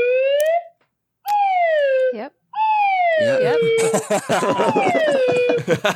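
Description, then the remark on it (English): A voice imitates a slide whistle with a series of loud, gliding whoops, a few short pitch slides and then a long descending sweep, while other people chatter and laugh over the final part. “Were this a polished and well-produced show, there would be a slide whistle sound.”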